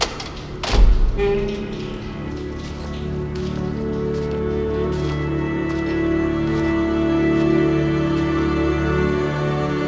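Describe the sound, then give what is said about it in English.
A heavy metal door thuds open, followed by a steady airy hiss of repressurization layered over a low mechanical hum that lingers even for several seconds, with no voices. “There's a hiss of repressurization, a cold gust. The door opens.”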